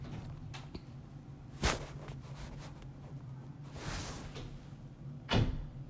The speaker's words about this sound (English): My sister decided to open and close the door again.